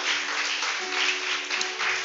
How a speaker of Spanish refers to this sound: Vamos a darle un fuerte aplauso al Señor en esta mañana, amén.